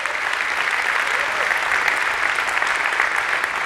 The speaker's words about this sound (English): And so we just want to celebrate you. Thank you for all you do for us and for the life you give. So we give a round of applause to all moms here.